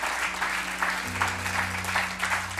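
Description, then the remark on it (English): A church audience claps steadily in sustained applause as two people come to the platform, a dense continuous patter of many hands with a low organ-like hum droning underneath. “As they come, maybe you'd give them a round of applause.”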